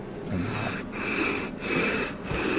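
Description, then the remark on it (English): A heavy block that has been surfaced, ground and cut is lapped back and forth over sandpaper to finish it finer, in about four steady, harsh scraping strokes, each separated by a brief pause. The sound is fairly loud and even, with no talking. “Lap this down a little bit.”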